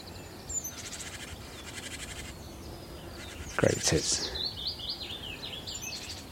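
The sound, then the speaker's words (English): A willow warbler sings a soft, sweet, descending phrase, with other small birds chirping and a sheep's loud bleat breaking in midway. “A gorgeous willow warbler.”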